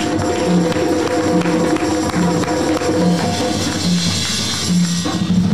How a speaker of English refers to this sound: Give a hand clap of praise for that.